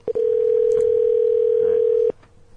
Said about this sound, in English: Good podcast ringtone.